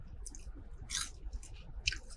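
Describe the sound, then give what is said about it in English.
Crunchy chewing of a golden fried chicken nugget, with several crisp bursts of crackle in an uneven rhythm over a low, soft background rumble. “Because it's crunchy and it's kind of golden, and then you bite it.”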